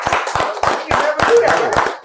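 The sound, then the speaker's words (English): A steady run of about eight loud hand claps at an even, brisk rhythm, with voices talking and laughing underneath. “That's a clap it up for that.”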